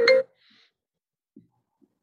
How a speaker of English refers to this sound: somebody just called me. My phone was do not disturb, but now look.